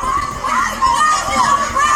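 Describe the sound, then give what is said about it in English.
A dense crowd clashing with police shouts and yells continuously while being pushed back, many voices overlapping into a loud, steady roar with raised cries rising above it, energetic throughout. “The scene is like a mosh pit. … is at the front of the crowd getting pushed back by police.”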